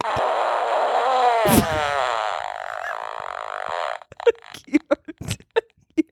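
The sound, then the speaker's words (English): A novelty fart sound button is pressed: a long, buzzy, wavering fart noise with an electronic quality blares for about four seconds, with a sharp click partway through, followed by short bursts of voices or laughter. “buttons from this like arcade bar, and one is a fart button”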